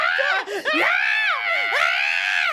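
A person screams loudly and continuously, a shrill wavering voice with pitch swooping up and down, breaking only for a couple of brief gasps.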